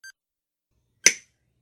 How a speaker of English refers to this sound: Blue! Yes, there's a blue one. Do I cut the blue one? Yes! Okay, here goes.